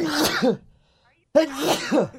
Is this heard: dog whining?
no